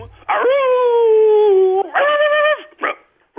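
A voice imitates a dog with two long, drawn-out whining howls followed by a short yelp, loud, with no other talking.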